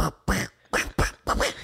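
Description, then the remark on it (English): A woman beatboxing in a squawky, Donald Duck-like tone: about five loud, buzzy, quacking bursts in a quick, uneven rhythm, with short gaps between them and no ordinary speech. “Now she's beatboxing.”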